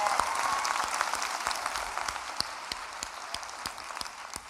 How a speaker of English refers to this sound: Yeah, let's give a round of applause to God. Straight up. That's power.